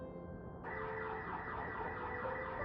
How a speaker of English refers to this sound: A car alarm tripped at the edge of the East Field.